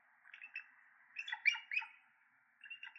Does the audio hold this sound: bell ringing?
no